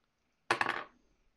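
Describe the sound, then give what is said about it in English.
Several hard ten-sided dice are rolled for damage, tumbling and clattering across a table in a quick burst of bright clicks lasting under half a second, then settle into silence. Fairly crisp. “And I literally rolled max damage.”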